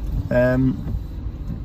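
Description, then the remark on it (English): Steady low rumble of a car interior while creeping through traffic on the way to work on a grey, rainy day, muffled and constant, with a brief voice-like tone rising over it near the start. “I'm stuck in traffic”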